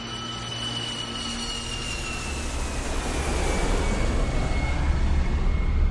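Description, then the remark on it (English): A British Airways passenger jet carrying 385 people roars in on landing in Kuwait on 1 August 1990, its steady engine rumble swelling louder while a high turbine whine slowly drops in pitch. No voices. “It's August the 1st, 1990, and a British Airways passenger plane carrying 385 people has just landed in Kuwait as Saddam Hussein's Iraqi army is invading.”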